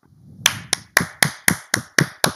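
A short burst of hand claps, about eight sharp, crisp claps in a steady, fairly quick rhythm, each one loud and distinct, with no voices over them.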